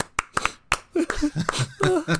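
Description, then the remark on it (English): A few sharp hand claps from two people clapping proudly ring out in an uneven rhythm, followed by a voice murmuring while a few more claps land in between. “A pair of clapping hands could be heard from behind him as he turned around”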